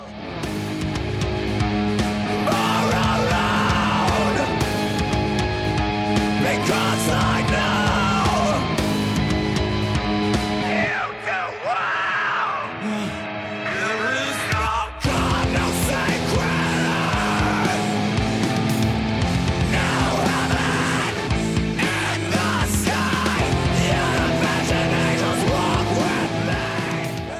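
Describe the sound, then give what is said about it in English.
Loud, dense heavy rock with distorted guitars and shouted, strained vocals; the low end drops out briefly midway before the full band crashes back in and drives on. “But then later on, this song has a feel to it. Let's just get a sample here.”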